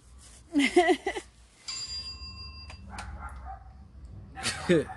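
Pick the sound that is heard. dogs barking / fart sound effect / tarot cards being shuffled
dogs barking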